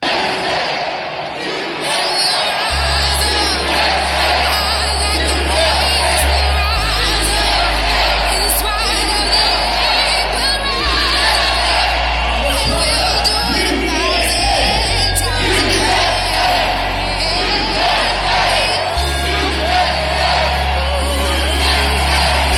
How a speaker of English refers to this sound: Those people were screaming USA. Some of those people were new citizens.